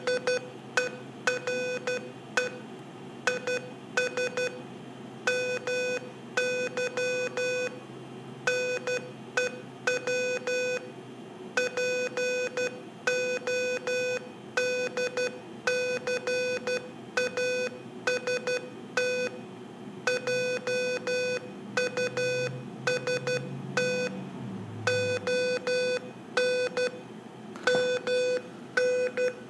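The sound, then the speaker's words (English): Morse code beeps: a steady stream of short and long electronic tones at one fixed pitch, tapping out irregular bursts with brief gaps throughout, alone with no talking. “And all I said there in Morse code was, here is my new podcast just on Morse code.”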